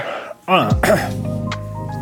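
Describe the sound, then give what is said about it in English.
A couple of throaty coughs in quick succession, rough and partly voiced, followed by a lingering hum of room tone. “I said that thing where you cough a lot.”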